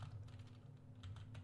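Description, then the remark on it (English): Quick, light keystrokes on a computer keyboard, a burst of soft clicks in an uneven rhythm over a steady low hum, fairly quiet with no one speaking. “I'm just like typing things in real quick so I can.”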